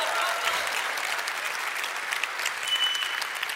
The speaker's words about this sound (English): If you're going to clap, just clap really good.